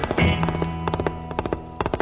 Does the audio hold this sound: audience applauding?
no